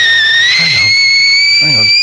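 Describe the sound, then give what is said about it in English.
A kettle for making tea whistles with a steady, piercing high tone that sustains throughout, its pitch creeping slightly upward, while brief bursts of a voice murmur underneath. “I've got to get up now for the kettle.”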